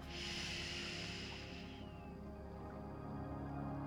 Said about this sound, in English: Wherever you are, inviting you to take a slow, deep breath in and then gently breathing out. Focusing your attention on your breathing. One more time, a deep breath in through the nose.